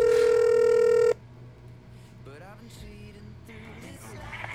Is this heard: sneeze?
no